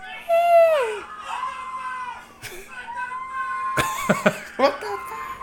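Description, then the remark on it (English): A man screams during a bear encounter in a video, in long, loud, wavering wails with sliding pitch, then lets out a few harsh, sharp bursts of noise near the end. “Listen to this. I just love the guy screaming.”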